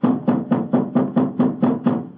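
A steady series of about nine firm knocks on the wooden door of an elephant house, evenly spaced and fairly loud, with no voices over them.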